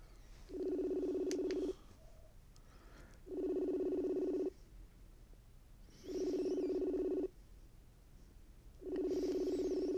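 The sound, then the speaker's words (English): A phone line rings out while calling the speaker's partner: four steady, buzzing ring tones of about a second each, evenly spaced with pauses between, heard on the caller's end with no one speaking. “Let's see if I can get them on the phone.”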